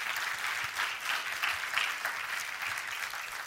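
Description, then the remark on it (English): A church audience breaks into applause, giving Jesus a hand clap: a dense, steady wash of many hands clapping at once that holds at an even level for a few seconds, with no one speaking over it. “Yeah, give Jesus a hand clap.”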